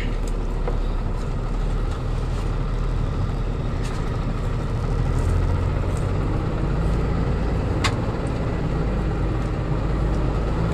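Steady, loud engine drone and road rumble from inside a moving truck, continuous for the whole stretch, with a few faint clicks and rattles on top and no voices.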